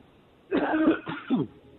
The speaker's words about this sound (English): Sorry, folks. I'm struggling with a little bit of a cough.